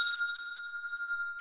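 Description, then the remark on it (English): A rusty Santa sleigh bell rings in one sustained, bright metallic tone with high overtones, holding steady for over a second before a brief rattle at the end. No voices are heard. “The rusty Santa sleigh bell.”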